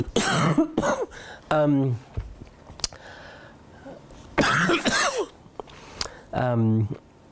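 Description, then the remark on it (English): A loud coughing fit: harsh bursts of coughs come in several clusters over a few seconds, some rough and voiced, separated by brief quiet breaths. “I had a thought here and I coughed it right out of my head.”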